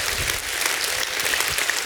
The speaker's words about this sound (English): Somebody ought to give God a hand clap and a shout of praise.